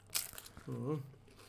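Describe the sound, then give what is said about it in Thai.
Loud crunching bites of crispy pork belly from the Uan Na shop, a quick cluster of crackly chews followed by a short voiced hum of approval. “อร่อยมาก เสียงความกรอบนี ้เคี้ยวทุกคนฟังอ่ะ”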